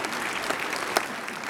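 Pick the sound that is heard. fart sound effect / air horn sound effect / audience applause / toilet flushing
audience applause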